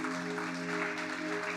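Steady, dense applause from a church audience for people who accepted Christ, a continuous wash of many hands clapping, with sustained low musical tones humming underneath throughout.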